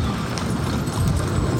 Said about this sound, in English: And the horses are now dragging the wagons and the gun carriage off into the Presbyterian Church. The Scottish troops stepping off smartly.